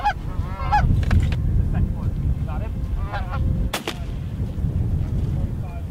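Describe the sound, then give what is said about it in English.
During a goose hunt, several geese honk in rapid, overlapping calls against a low rumbling background, then a single sharp shotgun blast cracks out at a goose about 25 yards away, followed by more scattered honking. “what this pattern looked like in a real hunting situation where that bird was shot”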